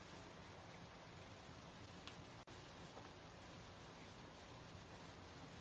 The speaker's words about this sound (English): Yeah, it is really pouring. Pouring.